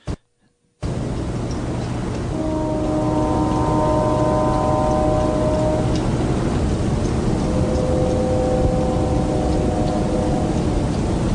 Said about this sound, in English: I hear what sounds awful lot like a train whistle.